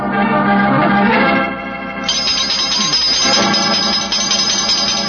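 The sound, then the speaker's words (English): Sherlock Holmes's doorbell rings loudly and insistently, a continuous metallic jangling that carries on for about five seconds, its tone shifting partway through, with no voices. “And if any more clients come wrenching at my doorbell, I shall ignore them.”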